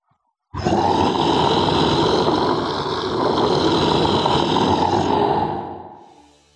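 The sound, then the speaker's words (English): A creature lets out one long, loud, rasping howl with a growling, roar-like edge, holding steady for about five seconds before trailing off. No one speaks. “And that is when you hear an all-too-familiar howl.”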